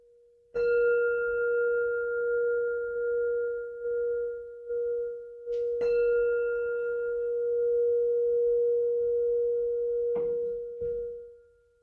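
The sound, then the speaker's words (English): A meditation bell is struck three times, each ring a bright metallic strike that blooms into a steady, humming mid-pitched tone sustaining between strikes before the last one fades out. “In a moment, I'll ring the bell.”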